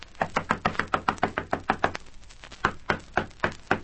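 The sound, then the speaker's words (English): Sharp, repeated knocking by a police party on the door of Napoleon Morgan's house in the Kingston slums: a rapid run of about a dozen raps, a brief pause, then several more firm knocks, fairly loud with no voices. “Nobody's very keen on answering the door.”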